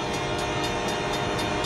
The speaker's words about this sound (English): This driver can't think he can beat a train.